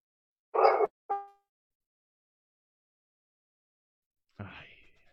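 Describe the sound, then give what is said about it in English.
A neighbour's dog barks twice in quick succession, a short sharp woof followed by a tonal yelp, then after a pause gives one more rougher bark, otherwise surrounded by silence. “Anyway, where's the dog? Where's the dog? Who's got a dog? I think that's mine.”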